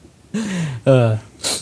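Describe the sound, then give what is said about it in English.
One fairly loud sneeze: a rising voiced wind-up, then a strong voiced burst, ending in a brief breathy hiss. No talking around it. “Like, oh, I have to sneeze. One sec.”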